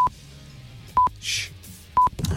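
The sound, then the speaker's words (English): The Radio X 'blaggers alarm' sound effect, played at 6:45 in the morning: three short, sharp electronic beeps spaced evenly about a second apart, with a brief burst of hiss between the second and third, and no one talking. “Oh, the blaggers alarm.”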